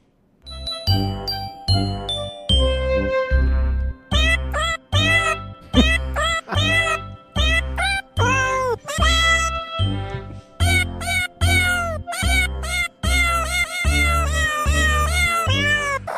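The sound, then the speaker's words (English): Sampled cat meows pitched into a jingly Christmas melody over a steady thumping beat and chiming bells, loud and continuous, with the meows sliding up and down as the tune's notes. “That is ….”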